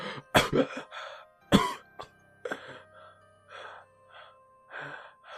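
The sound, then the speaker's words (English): A voice acts out a woman's sudden sharp gasp, followed by several quick, shaky breaths and small vocal catches as she breathes while still unconscious, fairly loud with brief pauses between them. “you see her breathing a little bit, take her quicker breaths, but she is still out.”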